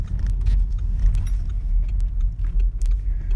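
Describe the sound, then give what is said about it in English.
A car pulls slowly into a busy parking area in Limerick and rolls to a stop, its engine a steady low rumble with small clicks and light rattles scattered over it. No one speaks. “Oh, it's a busy house, this. There, I'm the fifth car.”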